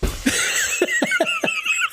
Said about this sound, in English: No, she just did like the loudest sneeze I've ever heard in my life. Like, it was like she jumped up when she sneezed. I almost blamed myself for like hurting your dog.